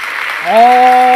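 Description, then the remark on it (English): A brief burst of steady, dense clapping fills the moment, and midway a sustained, rising vocal whoop joins in and holds over the applause until the end. “Let's go ahead and give ourselves a round of applause.”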